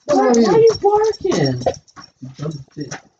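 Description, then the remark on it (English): A dog lets out a run of high, whiny yelps, then several shorter, lower barks in quick bursts, loud. “Why are you barking?”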